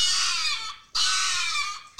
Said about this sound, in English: What does a scream sound like? It sounds like a chihuahua screaming.